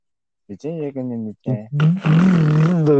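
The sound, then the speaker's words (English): A man's voice imitates a caveman or Neanderthal, starting with a few short guttural grunts and building into a loud, raspy, sustained roar. “Sound like a Neanderthal. That's how you sound.”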